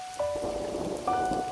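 Steady rain falls in a dense, even hiss, with soft rumbling underneath and a couple of sustained bell-like tones ringing over it. No one speaks.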